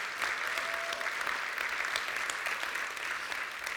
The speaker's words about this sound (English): Come on, if you're going to clap for him, let's not give him a golf clap. Let's give him a good clap this morning.